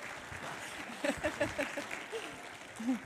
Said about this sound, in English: So let's all just welcome her with a warm round of applause.